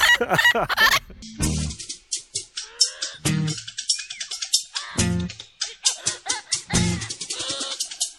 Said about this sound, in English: And how long have you had him? The whole 20 years. 20 years with your... What's the bird's name? Caesar. Okay, Caesar. What's the... Oh, will you be quiet? I don't know. It's getting noisy here between the dog and the parrot.